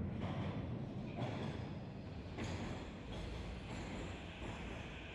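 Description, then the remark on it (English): A metro train rumbles along at speed between Khreshchatyk and Maidan Nezalezhnosti stations, a dense, steady roar of wheels and track noise, with faint rhythmic clatter and a brief metallic screech near the middle. “I'm on the metro on my way home from a public forum about the conflict in East Ukraine.”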